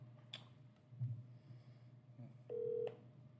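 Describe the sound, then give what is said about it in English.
A faint click and low hum lead into a single short, steady telephone keypad beep near the end as a phone call is being placed, with no voices. “Let's call the great Mark Franco and see what he has to say”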